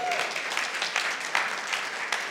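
A crowd at Phoenix Bible Church applauds the band steadily, a dense wash of clapping hands that holds at an even, fairly loud level throughout, with no voices breaking through.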